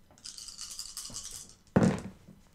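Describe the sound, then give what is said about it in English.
Eight dice rattle steadily in a cup or hand for over a second, rolled for an Investigation and Wits check, then land with a sharp, louder clatter that quickly settles. No voices are heard. “Eight dice, one of them was a success.”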